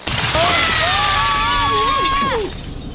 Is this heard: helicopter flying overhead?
no